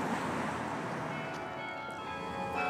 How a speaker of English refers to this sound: And the bells begin to toll.